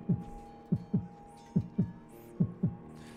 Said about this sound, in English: He just becomes this kind of pulsing thing for a moment. His heartbeat, you can hear.